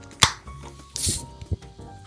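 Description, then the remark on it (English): A fizzy alcohol-free drink, AF Drinks Classic alcohol-free gin, is poured and splashes against the microphone: a sharp click, then a brief bright hiss of carbonation with a few soft low thumps, fading into a faint fizzing crackle. “Crashing into the microphone. Good amount of fizz.”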